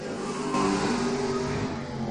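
A late model race car, number 27, roars steadily as it takes the green flag and accelerates down into turns 1 and 2 of the track on a timed lap, loud with a dense, buzzing harmonic drone and no voices.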